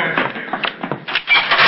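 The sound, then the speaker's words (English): A heavy metal jail cell door grinds and rattles as it is pushed shut, followed by clanking as a blacksmith locks it, loud with no voices. “All right, lock that door, blacksmith.”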